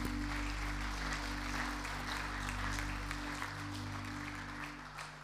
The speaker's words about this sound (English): How about give me a big hand?